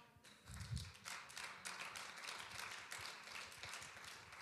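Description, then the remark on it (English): A crowd claps steadily, a dense crackling patter of many hands that keeps up for several seconds at moderate volume, with a low thump near the start. “You're clapping, but let me show it.”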